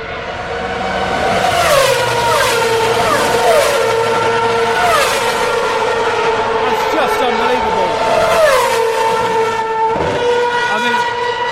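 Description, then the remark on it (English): Loud, high-revving race cars at full throttle scream past one after another through Eau Rouge, a left then a hard right taken without lifting, each pass dropping sharply in pitch as it goes by, under a continuous roar of trackside engine noise. “And you can hear the speed of the car at the rate at which they go past you here.”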